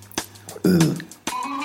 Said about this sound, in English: Crackly chest. No. When I cough, it...